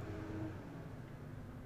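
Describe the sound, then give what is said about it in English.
A truck drives past outside, a steady low engine rumble with a faint droning hum, muffled and fairly quiet, filling the short moment with no one talking. “And that truck loved it too. Yeah, a little moment of silence for the drive by.”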